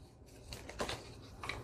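Soft rustling and papery swishes as the pages of a nature journal are turned in quick succession during a flip-through, with brief crisp flicks standing out over a low background hum.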